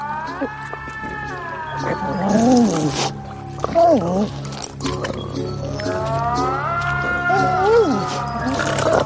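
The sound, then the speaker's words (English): A person imitates a weird cat moan, the sound a melting, bubbling creature makes in a film, with drawn-out, wavering yowls that rise and fall several times over a few seconds, fairly loud. “that weird cat moan sound.”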